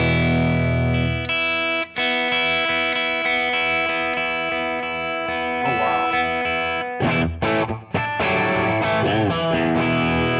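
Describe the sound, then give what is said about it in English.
A distorted electric guitar plays loud, sustained chords and notes through a Matchless amp and its cabinet, with a thick, harmonically rich tone, brief pauses between phrases and a busier, choppier passage toward the end. “So the whole time you've been into the matchless. Into the matchless. Into this cabinet.”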